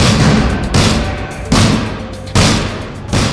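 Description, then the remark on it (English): Prisoners bang heavily on metal prison cell doors, booming out roughly every second, five loud impacts in a row, ringing over a dense, continuous wall of noisy din with prisoners screaming. “The sound of prisoners banging on cell doors, screaming obscenities, and all glaring at you.”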